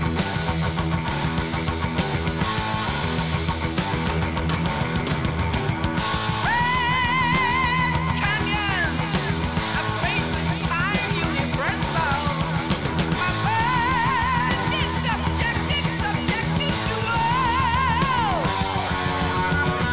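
A loud, dense heavy metal song with driving guitars and drums, joined after a few seconds by high, wavering falsetto vocals with strong vibrato that soar above the band.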